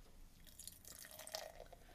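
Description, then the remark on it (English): Very pale, ultra-clear beer, similar to a Hefeweizen made with ale yeast, pours into a glass, a soft trickle of liquid with light fizzing, many tiny bubbles and a few drip-like splashes, forming a white foamy head. It's fairly quiet, lasts about two seconds, and no one speaks. “And the pour?”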